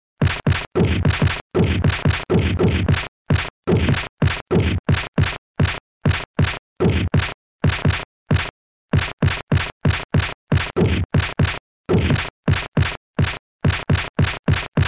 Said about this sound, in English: Not a joke video. That is actually him punching a tree like your 11-year-old cousin claiming he has ninja strength,